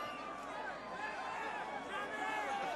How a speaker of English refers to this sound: If you can hear them, they're shouting his name to get his attention, to show him that there's an ambulance coming because people are hurt.